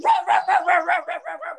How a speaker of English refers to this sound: He's so food-oriented that when we say the word food, he starts yelling at, barking at us.